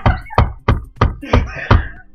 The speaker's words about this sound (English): I'm talking. I'm going to start knocking.